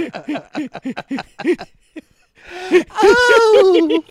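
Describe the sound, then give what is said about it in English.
A voice imitates a girl's frantic, gasping breathing, as heard in movies: a quick run of short, voiced panting gasps, a brief pause, then a long, strained, breathy whimper, fairly loud. “And that weird girl breathing too, you know?”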